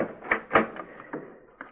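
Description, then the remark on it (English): A heavy bar barring a door from the inside is lifted off and the door swings open, heard as a series of wooden clunks and scraping knocks, with no voices. “He barred the door from the inside. I heard him do it. Yes, sir. I can feel a bar.”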